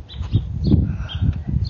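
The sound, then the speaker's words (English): Outdoor birds chirp in short, scattered calls on a cloudy morning, over a steady low rumble of background noise, moderately loud, with no one talking. “And it's not stopping the birds, so hey, take it for what it is.”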